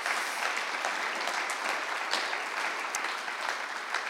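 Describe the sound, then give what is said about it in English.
Steady audience applause fills the whole stretch, a dense wash of many hands clapping at an even, sustained level with no talking over it. “I think that's probably applause worthy.”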